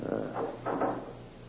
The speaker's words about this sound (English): Just a moment till I close the fire door.